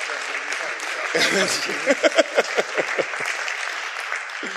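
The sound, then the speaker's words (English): Audience applause for volunteers walking up to the stage fills the whole clip as a dense, steady wash of clapping, with a burst of voices and rhythmic shouts or whoops rising above it midway. “Give these folks a round of applause as they're coming on up.”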